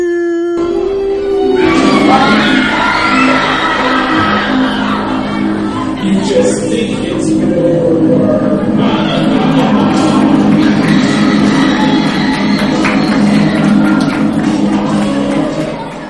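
A loud, drawn-out evil sea witch scream, howling and wavering in pitch for many seconds, with a crowd's noise mixed in underneath.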